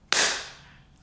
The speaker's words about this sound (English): Alrighty, clap. 1, 2, 3, clap.